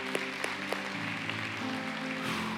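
A church audience claps in a dense, steady round of applause for the Lord, a few sharper claps popping out early, while sustained keyboard chords hold underneath and shift pitch twice.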